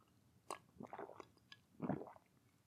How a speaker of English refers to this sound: Let me just have a quick another sip of tea. Today's tea is just a normal tea.